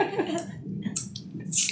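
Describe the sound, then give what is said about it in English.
A few brief, wet slurping sips of a light, crisp rosé wine called Saint Beatrice, with soft hissy mouth sounds over a low murmur of background chatter. “I'm about to take a sip. ASMR.”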